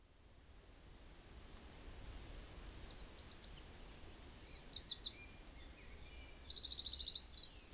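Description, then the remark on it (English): Garden birdsong: quick, high chirps and trilling phrases start partway through and repeat in lively bursts over a steady background hiss with no one talking. “I believe that birdsong should be prescribed on the NHS”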